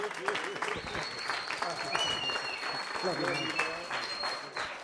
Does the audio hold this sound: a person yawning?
no